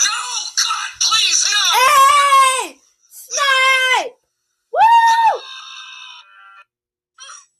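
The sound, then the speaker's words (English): A person screams loudly in several high, wailing bursts, a long shriek followed by two shorter ones, fading into a thinner trailing cry with brief silences between them. “don't scream on podcast.”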